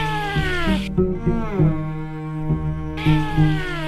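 cat meowing

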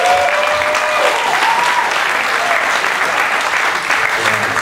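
audience cheering and applause

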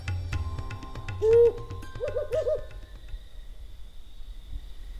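owl hooting at night

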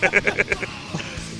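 person screaming

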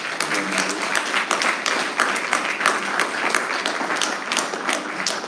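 audience clapping hands

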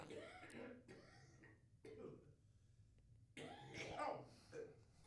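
coughing and choking

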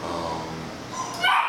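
dog barking and yipping

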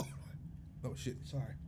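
coughing

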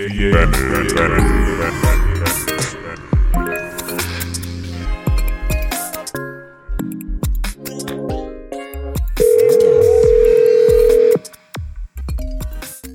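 phone call ringing

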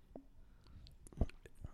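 slurping a drink

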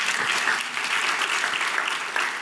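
audience applause

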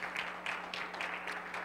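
audience clapping

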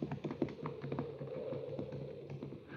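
horse hooves clip-clopping away

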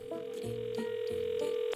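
telephone ringing

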